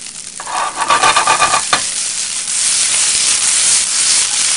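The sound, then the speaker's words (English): Fried rice in oil, with vegetables added, sizzles loudly and steadily in a hot pan, with a burst of scraping and stirring near the start before the crackle settles into a constant hiss. “What you want to hear, that sizzle.”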